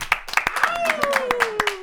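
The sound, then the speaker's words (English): The hosts of the Beer and Banter show clap in a quick, steady rhythm to sign off, about eight sharp claps, while a drawn-out voice slides slowly downward in pitch underneath. “We will clap after I say it.”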